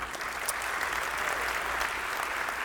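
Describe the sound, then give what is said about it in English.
An audience claps steadily for the speaker's son, an Air Force Academy cadet, a dense, even patter of many hands with a bright, crackling texture and no voices standing out. “See, Jesse, you're listening right now, and they just clapped for you.”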